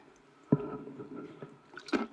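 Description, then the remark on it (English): A person takes a drink of water, with quiet liquid sounds and two distinct gulps or swallows about a second and a half apart, and no talking. “I need to take a drink of water, excuse me.”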